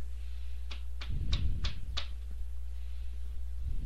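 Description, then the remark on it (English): Five sharp knocks on a wooden door in a quick, slightly uneven sequence, clear over a low background hum, followed by quiet. “a knock at the door.”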